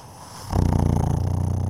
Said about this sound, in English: like he's purring.